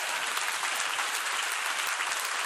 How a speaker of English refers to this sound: It's okay to clap for God's word.